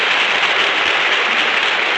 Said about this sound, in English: That applause goes from coast to coast.